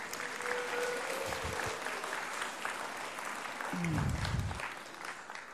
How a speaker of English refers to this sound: Let's give him a clap.